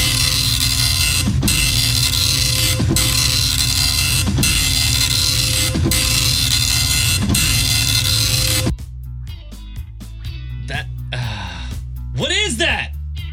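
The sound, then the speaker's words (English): A 1990s-era dot matrix printer, the kind using paper with tear-off side strips, prints in a loud, harsh, buzzing rasp for about nine seconds, broken by short regular pauses between lines, followed by quieter scattered clicks and brief voice-like sounds. “It's a dot matrix printer.”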